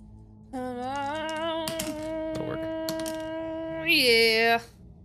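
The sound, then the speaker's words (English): Dice clatter as they're rolled, a brief burst of sharp rattling clicks in the middle, heard over a steady, droning harmonic tone that swells louder near the end. “Yeah, why don't you roll that?”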